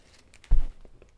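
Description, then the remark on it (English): A paper Quality Street chocolate wrapper being unwrapped: one short, soft rustling burst followed by a few faint crinkles, with no talking. “Oh, these paper packagings are quite good, actually.”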